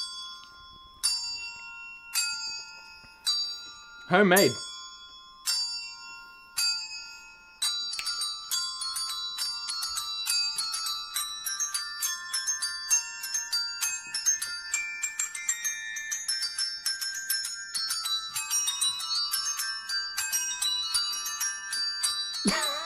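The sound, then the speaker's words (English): Bells play a Christmas tune, starting with slow, spaced single strikes, then building into a fast, dense cascade of bright ringing notes. Someone briefly says a word near the start. “This is proper Christmas music. You ready for it? Let's do it. Proper bell jingling.”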